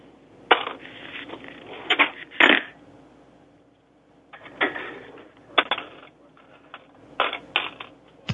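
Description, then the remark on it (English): A phone at a gas station being tossed back and forth and handled, with irregular clunks, knocks and rattling bursts spread across several seconds, some sharp and loud, others softer, with brief quiet gaps and no voices. “Sounds like he's just throwing the phone. They're tossing it back and forth.”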